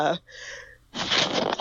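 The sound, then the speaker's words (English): A single sneeze: a short voiced, gasping build-up followed by a loud, noisy burst that trails off quickly. “Hold on, I have a sneeze coming.”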